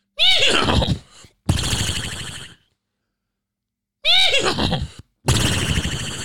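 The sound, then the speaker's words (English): Two people take turns imitating a horse whinny with their voices, each a warbling, wavering call followed by a breathy snort-like tail, with a pause of silence between the two attempts. “Who has a better horse noise? Do yours again.”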